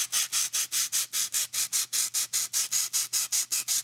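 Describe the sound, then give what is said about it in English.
Rapid, steady rubbing strokes, about four per second, each a harsh hissy squeak of styrofoam being rubbed together, over a faint low hum. No one speaks. “It's like someone's trying to squeak styrofoam in my ears, but it also sounds like someone's chasing a cat with a squirt bottle.”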